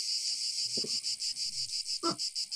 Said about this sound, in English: And as they see you guys, you kind of seem to startle them, and they begin to screech in a cicada like cadence.